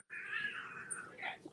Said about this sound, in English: Oh, God, my cats are fighting. It's not a euphemism either.